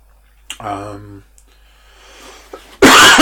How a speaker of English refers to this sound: I should probably wrap this up because I can't imagine anybody is enjoying this coughing.